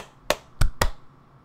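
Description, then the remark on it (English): Sharp hand claps, three quick bright cracks in under a second, the last two close together, each snapping off fast against a quiet background with no talking. Two people clap at about the same time as a sync signal for an audio recording. “Okay, clap twice.”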